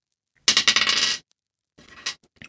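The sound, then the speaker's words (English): A six-sided die, rolled for damage, clatters and rattles across a hard tabletop in a quick burst of clicks, then a few softer taps as it settles on a 5, with no talking. “5 on the dice roll, so 8.”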